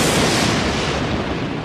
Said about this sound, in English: That was a very modern sounding lightning crash, too. Well, it just happened like just a second ago.